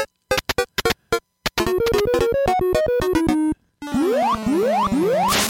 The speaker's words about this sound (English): all right, check this out. Some DK3 sound. I didn't play that yet, so enjoy it. I don't think I did. Here you go.